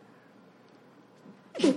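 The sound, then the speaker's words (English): After a stretch of near silence, one loud, abrupt sneeze bursts out at the very end, short and explosive, with no talking around it. “Bless you”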